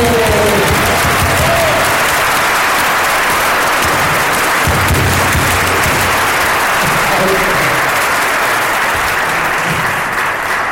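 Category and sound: crowd, audience applause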